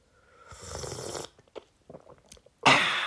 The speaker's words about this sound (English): Gonna be sipping the lemon and ginger tea all the way through this, because I think in the second half, I'm sipping it too. So, how do you like that sound? Nothing annoying about that.